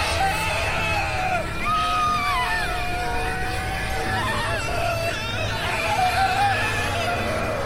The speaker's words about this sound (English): Sasha and Jerry clutched each other and screamed.